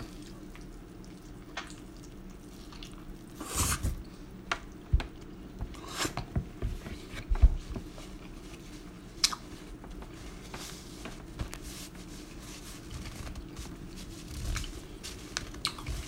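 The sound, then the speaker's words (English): Someone chews a bite of pizza topped with sausage, salami, capicola, cheese and basil, with soft, irregular wet squishes and a few sharper crunchy clicks scattered over about sixteen seconds. Nobody speaks. “So, if you can see it, there's sausage, there's salami, there's capicola, cheese, basil, I think, and crust.”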